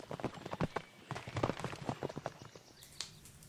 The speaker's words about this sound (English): Ysa raises her eyebrows and kicks her mount into a canter. Clarissa follows.